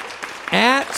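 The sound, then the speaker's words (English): A short burst of cheering from a pumped-up show crowd: one loud, sustained whoop rises in pitch over a soft, steady wash of clapping-like noise, lasting about a second. “The crowd is pumped up.”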